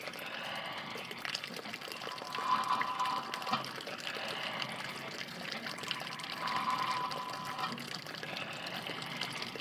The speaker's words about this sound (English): Lots of birds are singing in spite of the wind. And, as expected, the windmill is spinning like crazy, with water gushing forth from the exit pipe. No wonder this old abandoned ranch still attracts so many birds.